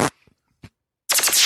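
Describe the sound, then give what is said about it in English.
After a sharp opening burst and a few faint clicks, a voice blows a loud, buzzy raspberry imitating a fart, its rapid fluttering rattle continuing to the end. “You have a tin ear, is what they would say when it comes to making fart noises or mimicking fart noises.”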